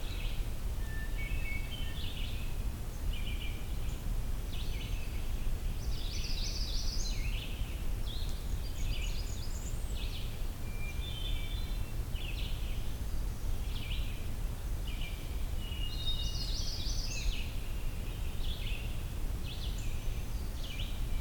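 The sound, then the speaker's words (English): A magnolia warbler sings short, bright phrases repeated every few seconds, fairly faint against a steady low rumble of outdoor background noise, with no voices present. “I think I've definitely got a magnolia warbler here, but Merlin thinks that here's a common yellowthroat, so that's an interesting discrepancy.”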